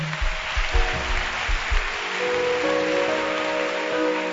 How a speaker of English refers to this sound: Clap your hands for him.